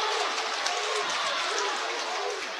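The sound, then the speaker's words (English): A loud, steady roar of crowd cheering and applause fills an indoor gym at a basketball game involving Westwood in the West End, during the second half, dense and continuous for a few seconds without letting up. “who has completely come alive here in this second half, as has this crowd here in the West End.”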